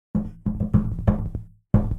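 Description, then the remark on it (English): A series of five hollow, resonant knocks on a wooden door, struck in an uneven rhythm with a short pause before the last one, each thud ringing briefly. “So I think I walk up to the door, and I give it a little rat knock.”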